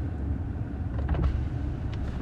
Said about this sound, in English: And I just realized that my you should roll your window down and say hi to Mom.